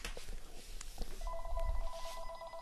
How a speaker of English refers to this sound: Let me see, my phone is ringing.